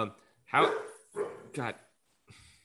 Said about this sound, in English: how about, God, of course, my dogs bark.